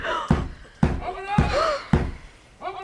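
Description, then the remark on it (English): Four heavy, evenly spaced knocks pound loudly on a door, while voices murmur faintly in the background between the blows. “We shall have to let him in or he'll break down the door.”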